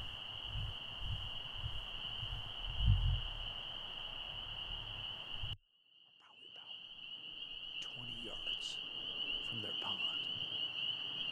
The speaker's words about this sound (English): You might also hear the trilling of a toad. If you listen close, I don't know if he's there or not.